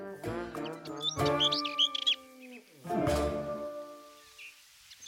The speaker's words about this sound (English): And there's a yellowhammer singing nearby from the top of a hawthorn bush.